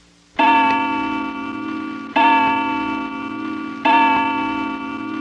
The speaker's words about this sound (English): It just starts with a one chime of the clock, and then you go right into the story.